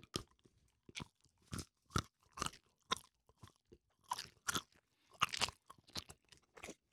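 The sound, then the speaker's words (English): Crunchy chewing of chocolate, a dozen or so sharp bites and chomps in an uneven rhythm, loud, with no talking in between. “We need to get to that chocolate pretty quick.”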